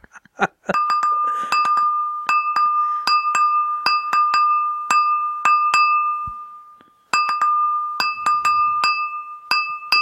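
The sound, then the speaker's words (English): A glass is tapped repeatedly by hand in a simple Christmas song melody, each clear ringing ding sustaining under the next strike, with a brief pause before the tapped tune resumes. Fairly loud, no talking. “Because sometimes my hand doesn't reach the glass. Oh, yeah. It's not as good as a triangle.”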